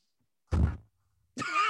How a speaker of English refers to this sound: shoving his face into his hand in disgust. That little thump of sound.